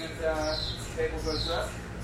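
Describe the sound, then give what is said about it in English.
A pump in an MRI room chirps in a repeating cycle as it circulates helium that keeps the MRI scanner cool, with a couple of high, squeaky chirps over a steady low hum at moderate volume. “Inside the MRI room, a pump chirps as it circulates helium that keeps the MRI cool.”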